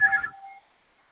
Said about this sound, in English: All right, so let's hear your buzzers. 1, 2, 3, go. Ding, ding, ding.